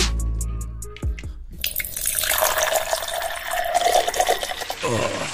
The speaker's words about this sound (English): That was a perfect pour, though. I respect that.